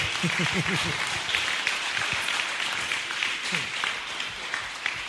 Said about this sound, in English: Clap for this church, oh. Clap for the church. Clap for this church.